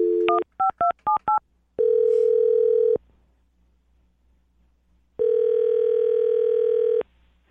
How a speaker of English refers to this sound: Okay, here we go. I'm going to dial this phone number right now.